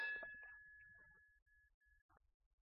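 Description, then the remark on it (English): A meditation bell is struck once, a bright metallic strike followed by a long, pure ringing tone that slowly fades away into quiet. “If you could please ring the bell.”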